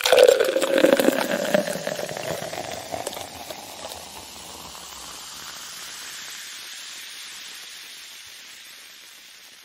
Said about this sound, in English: So I'll go first real quick because I'm itching to pour my beer here.